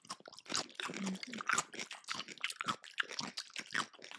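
Loud crunching from biting and chewing a crunchy crinkle-cut pickle, a rapid series of wet, crisp snaps and crackles repeating for several seconds with no voice.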